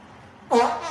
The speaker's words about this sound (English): Pranked you. There was a fart.